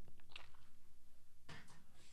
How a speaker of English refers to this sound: All right. I'm gonna take a quick sip here of my water and my coffee.